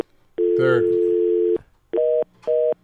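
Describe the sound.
A telephone dial tone from a phone left off the hook hums steadily for about a second, briefly overlapped by a voice, then gives way to two short, evenly spaced beeps, loud.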